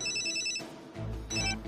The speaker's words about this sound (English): What is that? It's your cell phone, genius.